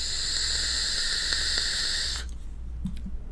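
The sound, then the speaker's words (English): An iStick 100 watt vape mod with two 18650 batteries and a tank, set at 82 watts, fires with a steady, bright hiss of vapor lasting about two seconds. It then cuts off abruptly, leaving a few faint clicks and a low soft thump in near-quiet. “I have this tank on here, which we're going to talk about, rocking it at 82 watts currently, and it looks a little dry, so let's hope I don't get a dry hit.”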